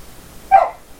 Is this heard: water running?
no